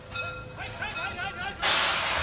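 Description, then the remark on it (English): A loud, steady hiss of escaping steam bursts in near the end, following a stretch of voices and faint whistling tones, like a train venting. “Yeah, it's a nice train.”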